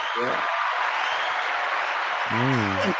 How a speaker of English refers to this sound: Thank you. I gotta give you a round of applause for that.